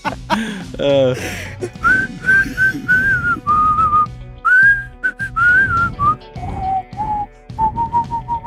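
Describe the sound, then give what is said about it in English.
Someone whistles the melody of a pop song, a series of short, steady notes in broken phrases, with plenty of breathy air noise around the pitched tones. “Can you whistle like an actual melody? Like do … or something?”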